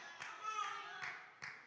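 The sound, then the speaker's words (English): Three sharp, separate hand claps ring out at uneven intervals, each a crisp slap, over a steady murmur of voices with a sustained vocal tone. “One clap. One clap.”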